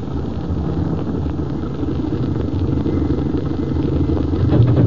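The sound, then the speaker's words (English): A car engine idles steadily, a low continuous rumble with a faint rattling texture that swells slightly toward the end, with no voices. “Go a little more, then stop. We'll walk the rest of the way.”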